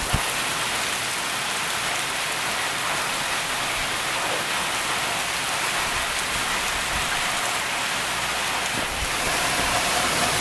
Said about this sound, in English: Let's see if it'll thunder that loud again. A thunderstorm, people on my Olympic thing, and we're going to see if it thunders again that loud.